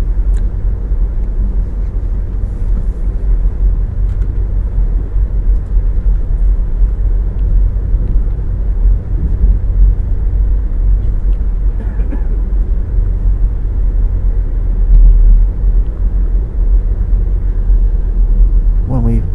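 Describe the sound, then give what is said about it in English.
A train bound for Hoboken rumbles through a tunnel in a loud, steady, deep roar that holds for the whole stretch, with a muffled voice sometimes heard beneath the din. “It doesn't affect the diesel trains at all, but my voice may be muffled because of the ambient noise caused by the tunnel.”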